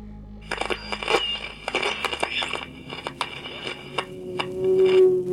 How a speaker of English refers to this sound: You hear the plane roaring down out of control and then crashing into silence.